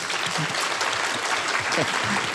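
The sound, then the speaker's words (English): A crowd applauds steadily, dense clapping filling the whole stretch at an even, fairly loud level, with a few faint voices or cheers mixed in beneath it. “Let's give one more big round of applause for Ellen O.”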